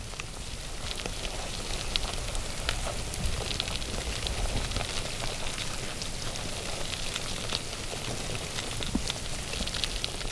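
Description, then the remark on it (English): More than 1,000 dermestid beetles feeding on a crow carcass make a dense, steady crackle, countless tiny clicks and ticks layered into a constant fizzing patter, like light rain, with no voices. “And they're eating a crow.”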